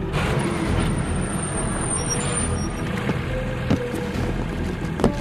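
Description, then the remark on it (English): Two heavy trucks rumble past with a steady, broad engine roar that fills the whole stretch, broken only by a couple of brief knocks near the end. No one speaks. “The guys coming around the trucks.”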